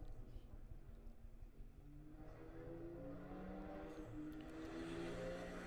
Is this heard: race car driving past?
yes